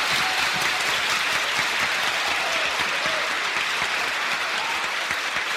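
Applause in parliament: a steady, dense patter of many hands clapping at once, sustained at an even loudness for several seconds with no voices rising above it.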